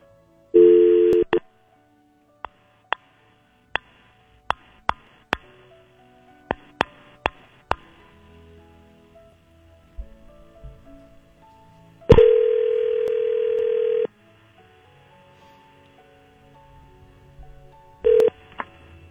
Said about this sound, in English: We're going to call her right now, live at 7:47 in the morning on Friday. Just so you know, this is happening live. Let's make the phone call right now. I'm going to lock you in and start dialing. Here we go.